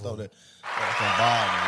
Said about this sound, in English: Look, we from Bolivar, man. Give a hand clap for Bolivar, D.